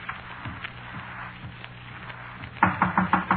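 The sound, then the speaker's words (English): Someone raps on a door: about six quick, loud knocks in a steady burst near the end, after a few faint, scattered taps over a low background hum. No one speaks. “Didn't you knock at this door?”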